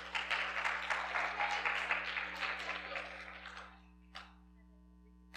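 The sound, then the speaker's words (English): A crowd claps steadily for about three and a half seconds, the dense patter thinning out before a couple of lone late claps ring out near the end. Constant low hum underneath. “You didn't agree to clapping?”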